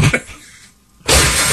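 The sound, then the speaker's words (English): A few short thumps, a brief lull, then a sudden loud crash of shattering glass as a deer indoors crashes right through it, the noise roaring on with debris to the end. “Crashed right through it.”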